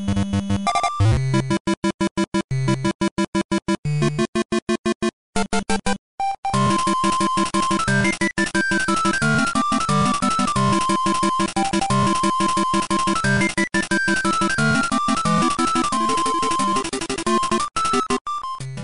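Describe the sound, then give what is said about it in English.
The upbeat chiptune theme from the Kirby video game Kirby's Dream Land plays on its own: bright square-wave melody notes hopping over a bouncy bass line, starting with choppy staccato bursts before settling into a steady, loud tune. “It's a Kirby game. It's Kirby's Dream Land.”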